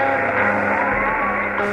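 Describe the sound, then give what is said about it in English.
A dense, steady roar of many voices yelling and shouting together, loud and continuous with no pauses, as a rioting mob at Ole Miss overturns a vehicle. “the rioting got worse. The crowd is overturning a vehicle.”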